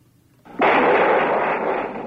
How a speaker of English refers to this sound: a very brief clip of him on the beaches at D-Day witnessing some of the landing of some of the craft and some of the firing towards some of the German craft that were in the skies. Just to give you a very brief example of this, here's George Hicks.